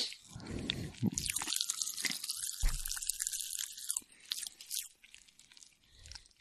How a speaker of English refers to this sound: Well, I think over the next couple of seconds, you're going to get like some Pop Rock ASMR. I don't know if that's going to get picked up or not. I hope it does, because it's going wild.